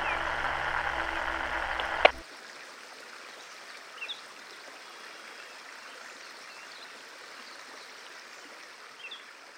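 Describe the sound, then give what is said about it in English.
Steady, rushing water flows on for several seconds after a brief burst of louder sound and a sharp click, with faint chirps surfacing once or twice over the soft, continuous wash. “The river rises.”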